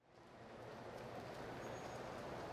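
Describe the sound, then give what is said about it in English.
A train at a station gives off a steady, dense mechanical rumble that swells in quickly and holds, with a faint high whine briefly riding over it. No one speaks. “Ben turns to board the train, but the door's shut.”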